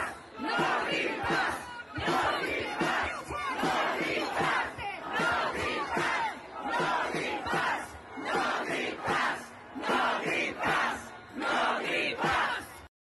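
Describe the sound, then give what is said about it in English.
A large protest crowd in Italy chants "no green pass" in unison against vaccine passports, voices rising and falling in a steady, repeated rhythm, loud and continuous throughout. “Here's Italy shouting no green pass as the government has forced, after Macron was forced to withdraw from his vaccine passport fucking plans.”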